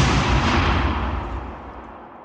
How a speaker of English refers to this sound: Explosion after explosion after explosion. For the last 3 years, every few minutes, almost every day, one of the richest men in America has been slowly frittering away his fortune on a remarkably weird hobby. Dynamiting the sky.